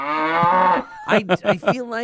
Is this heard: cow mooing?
yes